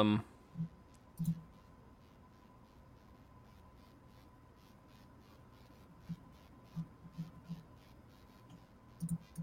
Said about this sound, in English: Clicking all kinds of links here.